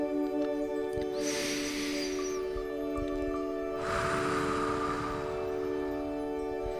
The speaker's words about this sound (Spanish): Respiramos profundo. Y con cada respiración profunda sentimos cómo se oxigena todo el cuerpo, cómo se oxigenan los órganos, los fluidos, todos los tejidos.